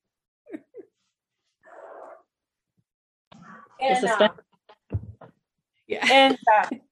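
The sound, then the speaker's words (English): A dog called Bird Dog, wanting to come in, whines and yelps in several short bursts separated by pauses, moderately loud, with a couple of longer, wavering cries toward the end. “And so now Bird Dog needs to come in.”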